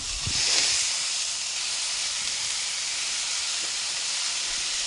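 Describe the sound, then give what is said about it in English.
Ground meat is crumbled into a pan that is too hot and sizzles, a loud, steady crackling hiss that stays even throughout, with a slight swell near the start and faint pops underneath. No one speaks. “I think I got the pan too hot because now it's going to cook this before I even get it all crumbled in.”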